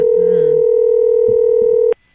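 A steady, unbroken telephone dial tone, heard while calling someone's mom who does not answer, holds one mid pitch for about two seconds, then cuts off abruptly. A faint voice murmurs briefly beneath it near the start.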